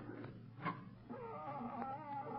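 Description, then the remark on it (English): A cat howls loudly, a drawn-out, wavering yowl rising and falling in pitch after a brief opening cry, with no one talking. “It sounds like a cat. That's the loudest cat I've ever heard.”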